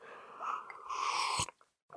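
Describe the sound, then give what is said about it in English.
A drink being sipped: an airy, slurping draw lasting about a second that ends in a sharp click, followed by a brief hush and a soft swallow. No one speaks. “Pardon my sip.”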